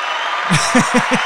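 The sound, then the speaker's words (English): An applause sound effect: a steady wash of crackling clapping noise, joined halfway through by a run of rhythmic low pulses, about five of them, evenly spaced like chanting or stomping. “Wait, applause.”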